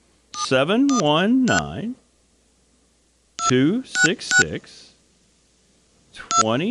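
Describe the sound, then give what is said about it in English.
Touch-tone beeps sound in quick clusters as a phone number starting with a 1 is dialed, arriving in three bursts separated by pauses, mixed with a wavering, voice-like sound. “I did dial a one. I'll try it one more time, but I did dial a one. With this phone, though, you never really know.”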